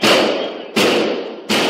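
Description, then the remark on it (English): Three loud gunshots fire at an even, steady pace during a school shooting in Nashville, each a sharp crack trailing into a booming echo that fills the space. No voices are heard. “Body cameras reveal police running toward the sound of gunfire without hesitation.”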